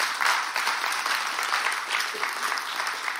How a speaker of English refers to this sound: Somebody say, now clap if that's what you want. Come on.